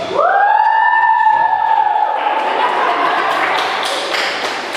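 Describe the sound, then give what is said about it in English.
An audience bursts into clapping for the DJ, a dense crackling patter that swells and holds steady, opening with a sustained high cheer or whistle-like tone over the noise. “Let's clap for the DJ.”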